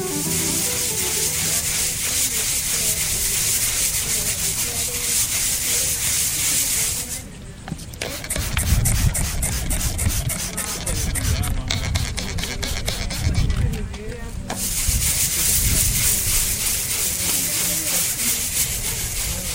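A brush scrubbing a historic headstone in Florida, students in the Florida Public Archaeology Network's Crypt course cleaning it by approved preservation methods; rough rasping strokes repeat in an uneven rhythm over a steady bright hiss, briefly easing off midway before the scrubbing picks up again.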